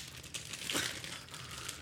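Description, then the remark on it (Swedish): Plastic packaging crinkles steadily as a packet of Fröknäcke seed crispbread is worked open, with a sharper, louder crackle near the middle of the short clip. No one speaks. “Du, den öppnar inte.”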